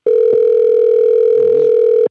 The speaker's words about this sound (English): And who's not answering the phone? They have one more. One more ring.